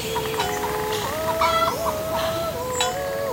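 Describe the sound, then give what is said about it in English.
Several chickens cluck continuously, their overlapping warbling calls rising and dipping in pitch over a steady low background hum. “All I have to do is add a calm breeze, some cowbells and chickens clucking, maybe a singing voice in the distance, and voila, you're there in the Swiss Alps.”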